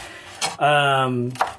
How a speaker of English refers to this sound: I can't look at my phone because I'm chopping onion or pepper, bell pepper, Jesus.